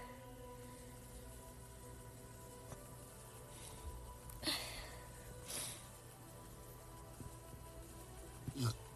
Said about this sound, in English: All right, excuse me for the burp.